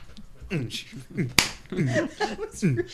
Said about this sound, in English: Yeah, I think you might have popped your mic. That's why I clapped above it.